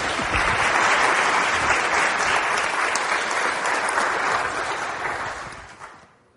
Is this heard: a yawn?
no